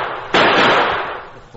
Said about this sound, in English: Like a shot, Breed ran across the arroyo and, leaping from one side to the other like a fleeing deer, disappeared through the woods as the Lone Ranger threw a few random shots after him.